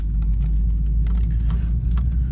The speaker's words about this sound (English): See, I'm driving to the dog park right now.